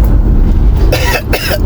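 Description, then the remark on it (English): Two harsh coughs in quick succession from a man recovering from a very nasty cough, loud, over a steady low rumble, with no talking. “I am recovering from a cough. A very nasty cough that I had.”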